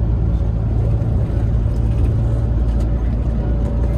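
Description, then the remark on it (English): A bus engine, damaged after the bus bottomed out on a wrong turn in Texas, runs loudly and continuously, a heavy low droning rumble with an uneven, rough-edged texture that holds steady throughout, with no voices. “Yeah, so when he took one of his wrong turns, he bottomed out the bus and doesn't sound great.”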